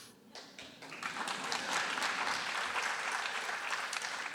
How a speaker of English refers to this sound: I love that, and props to those who wanted to clap that.